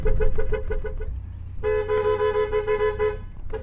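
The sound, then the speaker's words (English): A truck's car horn honks in a quick run of about seven short beeps, then a long wavering blast lasting over a second, with a low engine rumble underneath, sounded to herd goats grazing at the edge of a vacant lot. “this is Hucky's method of herding goats, by car horn.”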